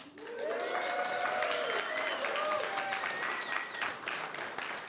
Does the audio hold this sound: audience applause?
yes